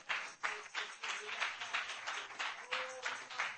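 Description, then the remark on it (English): A standing crowd claps hands to the Lord in praise, in a steady, even rhythm of roughly two claps per second, loud and sustained, with a faint murmur of voices underneath. “Let's stand to our feet and clap our hands to the Lord right now in praise.”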